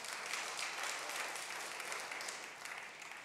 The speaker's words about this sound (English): Can y'all clap it up